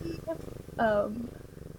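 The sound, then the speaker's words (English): A cat purrs while rubbing all over the microphone, a steady low rumbling throb, broken midway by a brief, bright meow-like chirp before the purring continues. “Producer Derek's kitty Desi is here. She's rubbing all over the mic.”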